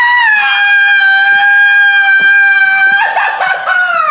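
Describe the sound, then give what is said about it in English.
A voice imitates a mouse scream with one loud, high, strained squeal held steady for about three seconds, then breaking into a wavering, sputtering finish. “Yeah, you don't have to hear the mouse screams like this.”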